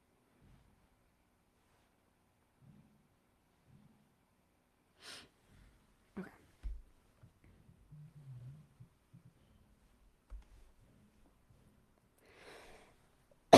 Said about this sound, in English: Excuse me, I still have some of my cough left over.